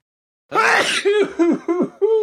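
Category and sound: human body sound, sneeze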